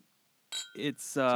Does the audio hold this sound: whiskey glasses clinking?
yes